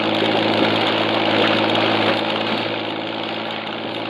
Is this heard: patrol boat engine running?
yes